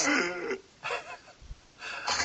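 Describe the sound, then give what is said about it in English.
A person imitates wheezy, asthmatic breathing, like breathing through a straw, to mock the old Mustang V6 engine: three strained, raspy breaths with a whistling edge, separated by short pauses, fairly loud. “It used to be an asthmatic with a breathing through a straw.”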